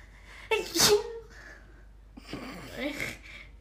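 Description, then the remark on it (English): Two sneezes from two different people, the first a sharp, explosive burst and the second following a second later with a longer, breathier, drawn-out sound. “I love the difference between our sneezes.”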